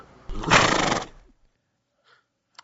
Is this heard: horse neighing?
yes